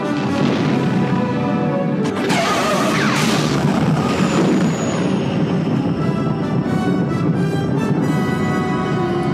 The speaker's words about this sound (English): The explosion of Death Star number 2. Wedge shoots the reactor. We get some electricity going on. An explosion that chases the Millennium Falcon from the inside all the way to the outside of the Death Star.